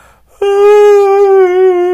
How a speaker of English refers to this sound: I'm sorry. I had to yawn.